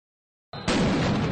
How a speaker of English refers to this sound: When it starts with an explosion, it's always good. Oh, it's always a good time when there's explosions to be found.